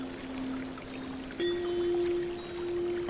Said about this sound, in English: You slowly open the door, and you can hear the sound of water.